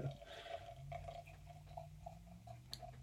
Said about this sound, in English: Ooh, pour sound effects. Nice. You guys don't get those anymore.